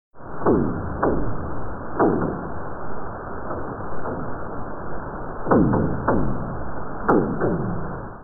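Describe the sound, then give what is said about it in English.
North Pacific right whale gunshot calls heard through a hydrophone: about ten sharp, booming cracks at irregular intervals, some in quick pairs, each ringing down briefly, over a steady underwater hiss with no voices. “If you happen to be an animal underwater or have access to a hydrophone to listen to North Pacific right whales, this is what they would sound like.”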